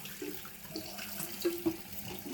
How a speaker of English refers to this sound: Do you want to hear some water? How much can you hear the water? How much? I don't know. We are pouring out.